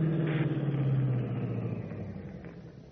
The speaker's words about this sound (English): Then, suddenly, over the deadly, piercing tone of Stark's voice, Batman is conscious of another sound, an approaching car. And Stark is silent again.